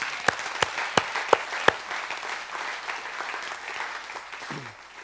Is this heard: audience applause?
yes